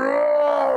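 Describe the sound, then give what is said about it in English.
A person imitates a monster barking and roaring, voicing a giant Doberman-faced creature drooling molten lava: one loud, sustained, throaty groan-like vocal tone that holds steady for under a second, with no other sounds around it. “And it begins like barking and roaring, and each one sends waves of sound pulsing through the crowd.”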